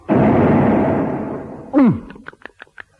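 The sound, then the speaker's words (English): A loud, booming rush fades into a swooping downward slide, then a short run of sharp, uneven clicks as a whale's great jaws slam shut in a cartoonish sound effect. No one speaks. “The great jaws snapped shut.”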